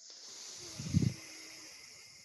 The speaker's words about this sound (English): So breathing in, blocking that left nostril, blocking both, holding, and then breathing out through the right nostril.